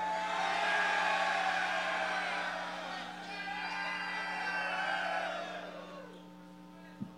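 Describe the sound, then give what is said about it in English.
A live crowd in Philadelphia screams and cheers together on cue for an official show photograph, in one sustained, dense roar that swells and then gradually fades out over several seconds, with a steady electrical hum underneath. “Get those buds in the air. Let's get a photo. In three, I want you to just scream, Carson Wentz is the king of the North!”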